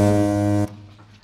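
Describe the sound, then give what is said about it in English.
A censor beep covering swear words in a film clip: one loud, steady, buzzy tone holding for about two-thirds of a second before cutting off abruptly, leaving only a faint low hum. “There you go, suitably beeped out for the inappropriate words that we heard.”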